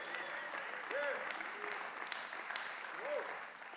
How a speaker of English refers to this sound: That's a good place to give him a hand clap.